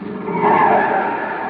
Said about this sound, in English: The chief's on his way down. Oh, that must be his car now. Oh, no, he couldn't make it this fast. Well, then who is it?